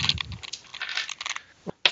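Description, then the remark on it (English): Dice clatter and tumble across a hard tabletop in quick, rattling bursts, a brief pause, then another sharp clack as they settle, fairly loud with no talking. “That's snake eyes. I'm burning those dice.”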